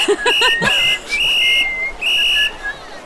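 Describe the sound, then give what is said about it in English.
A loud, shrill whistle is blown in a few sharp blasts, the longer middle ones held steady at a piercing pitch, with no talking. “Okay, so I will judge that you regroup to the sound of a very loud whistle.”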